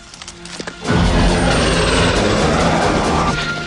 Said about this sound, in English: His hair billowing in the breeze, Rambo spins round, hearing the chopper.